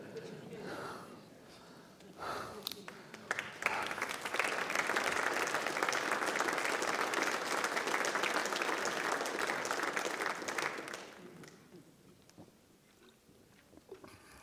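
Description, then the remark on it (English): A church audience breaks into steady, dense applause during a sermon; it swells after a couple of seconds, holds strong for about eight seconds, then thins out and fades to scattered claps. “If I was that beat up that bad, I probably couldn't clap very much either.”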